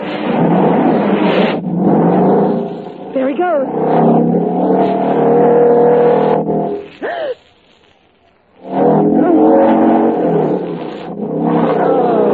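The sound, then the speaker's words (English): A motorcycle ridden along a wire revs loudly, its pitch rising and falling in repeated surges, cutting out briefly before roaring back, with a voice speaking over it. “Watch him ride that motorcycle on nothing but a wire.”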